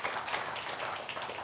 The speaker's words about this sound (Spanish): Denle un fuerte aplauso, amén. Amén.